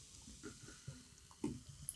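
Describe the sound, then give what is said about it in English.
An Irish stout, Reverend Hooker, poured from a can, heard quietly as soft gurgling splashes and small drips over a faint fizzy hiss, with no voices. “Right, pour in. Pour in up.”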